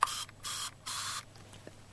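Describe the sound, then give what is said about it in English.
Three quick hissing bursts of a throat spray pumped in succession, fairly loud, with short silent gaps between them and no talking. “I've got a throat spray here, Melissa, because I've got a sore throat.”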